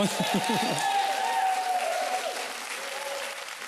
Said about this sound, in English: 1,260 people in one service baptized, giving their lives to Jesus. If we're going to clap for that, we got to clap. Come on.